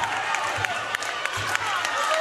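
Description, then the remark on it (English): The Bartow crowd cheers at a basketball game with 1:11 left, as the Eagles have the ball after a full timeout, in a loud, continuous roar across the whole stretch, with brief sharp claps or shouts popping out of the dense noise now and then. “This Bartow crowd cheering them on.”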